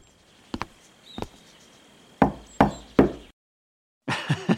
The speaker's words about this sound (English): That's knock. The secret knock. Yeah, the secret knock.